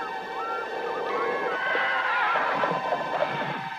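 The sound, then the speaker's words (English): A horse whinnies in a shrill, quavering cry that rises and wavers for several seconds. It is fairly loud, over a steady background hum, with no one speaking. “Some hear the sounds of ghostly horses hurtling up the stone stairs of a castle.”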